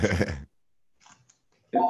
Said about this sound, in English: Oh, the phone's going on.